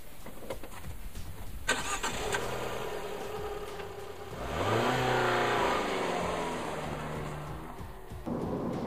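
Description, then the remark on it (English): A Cinquecento car's engine cranks and catches, settles into a rumbling idle, then revs up as the car pulls away and accelerates on a test drive, the pitch climbing before easing off, heard from inside the car. “So let's take this one for a little spin.”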